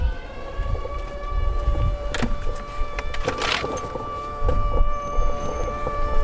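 An air raid siren in Ukraine sounds as a steady, droning multi-tone wail that holds throughout, over a low rumble and a few brief whooshing bursts of passing noise. No one speaks.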